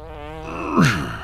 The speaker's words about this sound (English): I say there's never been a better timed fart than I let him have just then. I even rolled up the window to make sure he got all of it.